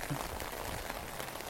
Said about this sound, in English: Actually, I planned on talking about something else, but woke up to the sound of rain outside and thought, let's just lean into that.